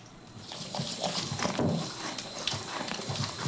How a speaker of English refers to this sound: This is a horse eating apples. Yeah. Deep fart? Tune out, all of those of you that hate to hear people chewing.